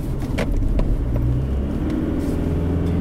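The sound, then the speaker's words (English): Steady low rumble of an unladen Toyota car driving on the road, heard from inside the cabin, with a continuous engine drone and a few faint knocks and thumps from the road surface. “I think the suspension on this car, unladen, is pretty good. You can usually tell if I'm going over bumpy stuff.”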